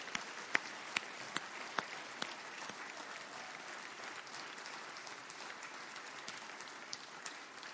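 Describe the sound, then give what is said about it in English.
A church audience applauding steadily, dense overlapping claps with a few sharper individual claps standing out, sustained at an even, moderate level throughout with no talking. “now everybody's applauded for you at church.”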